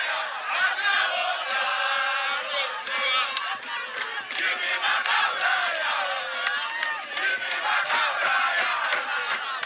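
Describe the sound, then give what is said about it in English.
A large crowd gathered at the MDC headquarters and the memorial in Zimbabwe chants and cheers continuously, a dense roar of many voices with rising shouts and whistles that stays loud and steady throughout. “Namibia's opposition leader Makendri Venani addressed the crowds gathered at the MDC headquarters and the memorial.”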